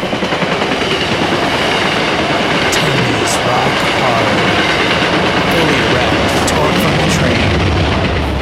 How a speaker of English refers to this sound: Please hold for a train break.